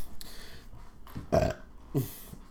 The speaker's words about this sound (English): I'm burping like a fuckface.